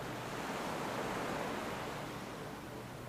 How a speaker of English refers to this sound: Feeling your breath flow through your body as you listen to those crashing waves.